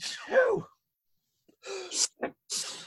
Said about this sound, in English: Bless you.